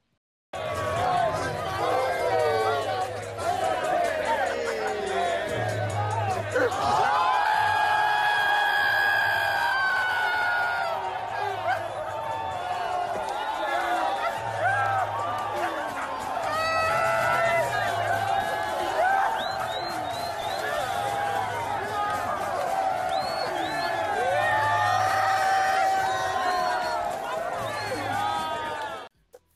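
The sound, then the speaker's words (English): A loud crowd at a basketball game roars for half a minute, reacting to a woman twerking and dancing in front of them, with whoops and shouts swelling in waves over constant chatter, while a steady low thumping beat pulses underneath. “This is a video of a chick at a basketball game twerking and dancing in front of the crowd.”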